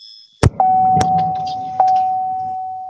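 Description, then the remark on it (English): A car fails to start: a few sharp mechanical clicks, then a steady dashboard warning tone that keeps sounding alone, like a dying battery. “Don't let your car die. Don't let your battery die.”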